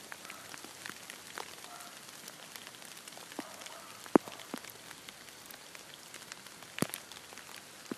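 Steady rain patters across grass and leaves, a dense, hissing wash dotted with sharper individual drips and a couple of louder splashes, with no voices.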